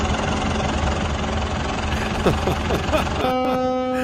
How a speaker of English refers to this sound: Yes. The honking is continuing.